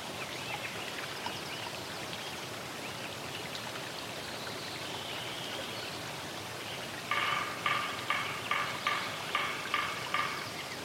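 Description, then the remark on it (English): In a meadow one year after selective logging, a steady, hissing rush of stream water runs throughout; late on, a sapsucker starts hammering, a string of about eight sharp, woody tapping bursts in a stuttering, uneven rhythm above the flow. “It's muted. The main sounds are a stream and one hammering sapsucker.”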